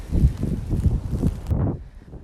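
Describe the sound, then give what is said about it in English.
Gusty wind in snowy woods, recorded while walking a dog, buffets the microphone in loud, low rumbling bursts, then drops to a softer, duller rush for the final moments. No one speaks. “So yeah, I don't know if you can hear the weather around me. I'm in the woods walking the dog.”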